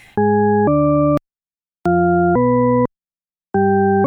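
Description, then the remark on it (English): Tritone-paradox tone pairs: two steady, organ-like ambiguous tones a tritone apart played back to back, the second shifting in pitch and heard as either rising or falling, repeated three times with short silent gaps, loud and clear with no voices. “So the tritone paradox, it's basically that people can hear this progression going from one note to a tritone away, mm-hmm.”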